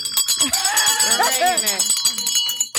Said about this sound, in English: I don't even know, but I'm ringing the bell. Ring the bell. Because you have to give God the glory for that.